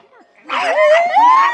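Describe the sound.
People mimic dogs barking, one voice rising into a drawn-out, whining yelp that lasts about a second, loud, with other voices mixed in after a quiet start.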